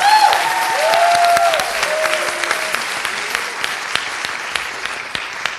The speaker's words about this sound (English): we are thrilled and excited and hope you will welcome with a rousing round of applause Madeline Miller, who's based in Philadelphia.